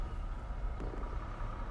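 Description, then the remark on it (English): A truck rumbles steadily somewhere nearby, a low, continuous engine drone with road noise that holds at an even, moderate level throughout, with no voices. “Is the truck behind us gonna... Yeah, everybody's gonna be all noisy. Every time we're trying to record.”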